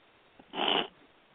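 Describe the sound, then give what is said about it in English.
A single brief vocalization from a big orange cat, a short, fairly loud call lasting about a third of a second against a quiet background, with no talking. “My big orange cat”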